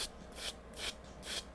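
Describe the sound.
A voice imitates shuffling with three soft, breathy rasping swishes in an uneven rhythm, each a brief hiss that swells and fades, with no words spoken.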